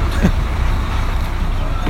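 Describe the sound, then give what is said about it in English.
A steady low rumble of a bus in motion heading home after a United football match fills the space, with engine drone and muffled road noise, faint voices murmuring in the background throughout. “Right, back on the bus, time to go home.”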